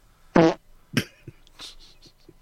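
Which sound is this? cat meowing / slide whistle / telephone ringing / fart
fart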